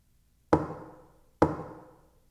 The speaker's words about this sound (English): knocking on windows to get a few laughs? It's a possibility. Come to think of it, maybe it was my imagination. Maybe I heard the usual creak in the house, and my paranoid mind has mistaken it for a knock.